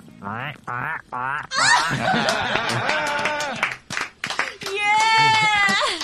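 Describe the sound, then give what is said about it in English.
A drummer imitates a pig squeal: three short grunting bursts, then a long, strained, raspy squeal and a final high-pitched shriek, loud. “All right, let us get a fucking pig squeal out of you.”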